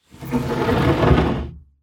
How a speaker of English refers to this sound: And the door slides open.